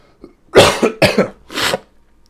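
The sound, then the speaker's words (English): Three harsh coughs in quick succession, each a loud raspy burst about half a second apart, with no talking around them. “I'm sure at this point in the episode, everybody's that's probably listening is like giving this a cough counter.”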